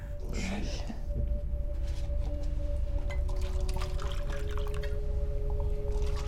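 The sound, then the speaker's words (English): Liquor is poured straight, with no ice or water, steadily into a glass for several seconds, a continuous gurgling stream with a faint ringing tone, over a low background rumble. “Straight up. No ice, no water, no chaser.”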